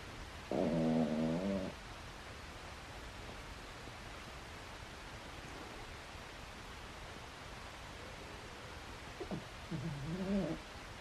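Gentle snoring: two soft, droning snores roughly nine seconds apart, with a steady background hiss filling the quiet stretch between them. No one speaks.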